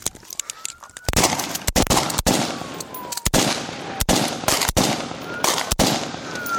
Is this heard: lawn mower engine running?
no